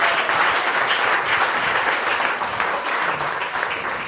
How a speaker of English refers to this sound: God bless you richly as I give the chance to our brother. Amen. A round of applause. A round of applause, believer.